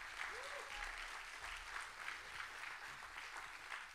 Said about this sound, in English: Why don't we give the Lord a big old clap in here?